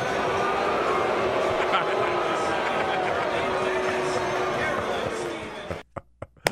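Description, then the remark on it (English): A large stadium crowd at a New York Yankees game, responding as the announcer wishes Mayor Rudy Giuliani a happy birthday, lets out a loud, sustained mass of voices for about six seconds, then cuts off abruptly, leaving a few short sharp knocks. “You can't quite make out the announcer, but he's saying happy birthday to Mayor Rudy Giuliani, and you can hear the crowd response.”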